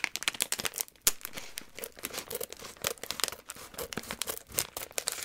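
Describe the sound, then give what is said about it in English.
Continuous crinkling and crackling of thin plastic packaging for about five seconds, with dense irregular bursts of rustle as a bag of saltlet sticks is cut open. No talking. “I'm just going to cut it. It's so much easier for me.”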